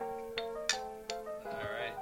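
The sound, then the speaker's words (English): Three or four bright glass clinks in quick succession in a toast, each leaving a ringing, bell-like tone that hangs in the air, picked up by a microphone, with faint voices murmuring underneath toward the end. “We got that one come over the phone. We got some cheers.”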